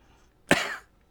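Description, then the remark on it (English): A single sharp cough bursting out abruptly and trailing off with a short breathy tail, with near silence before and after. “Oh, hey, sorry for that cough”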